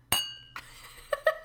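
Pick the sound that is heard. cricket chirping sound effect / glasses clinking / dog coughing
glasses clinking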